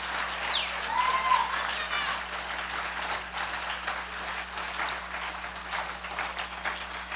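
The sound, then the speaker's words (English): A church audience applauding after a baptism on Easter, dense, steady clapping that fills the whole stretch at a fairly constant level, with a brief high whistle near the start. “So I'd like to ask you to just give her another hand of applaud because of her step of following Christ.”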